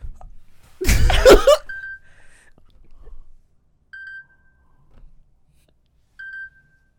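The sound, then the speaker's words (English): An alarm beeps in short, clear tones, repeating about every two seconds, three beeps in all, with a sudden loud burst of noise just before the first and quiet between them. “If you ever hear this alarm again, you're actually traumatized.”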